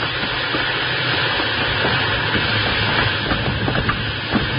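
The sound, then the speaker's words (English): A steam locomotive roars, a dense hiss of steam over rumbling wheels and faint rail clatter, holding steady and loud throughout with no voices, as it is slowed down by running full steam in reverse. “I'll give her all the steam you've got back.”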